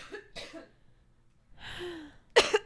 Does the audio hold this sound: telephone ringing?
no